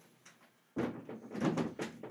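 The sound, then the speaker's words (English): A door is pulled open to let a cat out with a sudden thunk and a creaking, scraping sweep that swells and fades in a few pulses, with no talking. “Oh, let me open the door for the kitty cat.”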